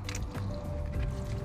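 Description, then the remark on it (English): A soft, continuous slurping sip of caffeine-free Diet Coke through a straw from a large 7-Eleven Double Gulp cup, a wet, gurgling draw lasting about a second and a half with no talking. “Excuse me while I drink my caffeine-free Diet Coke in the double gulp.”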